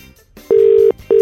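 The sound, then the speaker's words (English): An outgoing phone call during an FM 104 radio phone-in contest: a steady electronic ringback tone sounds, briefly pauses, then starts again, fairly loud, with no voices. “All right, gotta answer the phone with that.”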